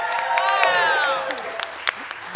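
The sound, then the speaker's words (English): A game-show studio audience breaks into dense applause and cheering after a contestant answers correctly, with a loud whooping voice rising and falling over the first second, then scattered sharp claps as the noise thins out. “The here crowd is now by the way, the crowd erupted like a volcano, guys.”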